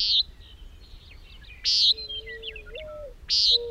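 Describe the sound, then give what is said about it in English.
Swallows chirping: three loud, sharp chirps at steady intervals, with softer twittering and a thin whistled note between them, over a faint low rumble. “Drinking on the wing suits swallows best.”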